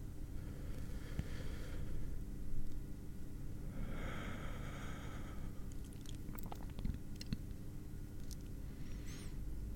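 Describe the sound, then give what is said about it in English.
Steady breathing with heavy nasal snorts and a few wet, chewing-like mouth noises, all fairly quiet and continuous with no talking. “I do like breathing sounds.”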